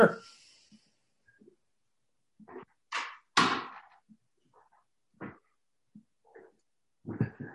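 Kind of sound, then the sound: household object, door being closed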